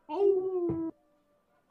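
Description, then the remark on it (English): A voice imitates the sweet howl of Beans: one smooth, sustained mid-pitched tone held for under a second, fairly loud and steady, with a brief rough burst near its end before it stops abruptly. “So you hear that, and you hear, a very sweet howl.”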